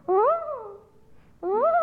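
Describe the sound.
A person imitates a loon's call: a loud, wavering wail that swoops up and then slides back down, followed after a short pause by a second rising phrase.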